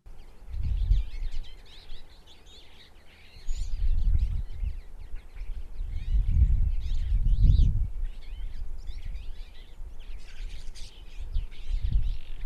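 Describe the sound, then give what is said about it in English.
A Twite, a small finch, chatters continuously, with rapid twittering notes running throughout, heard outdoors with low rumbling wind or handling noise pulsing underneath. “It's a sweet little chatter. Very conversational.”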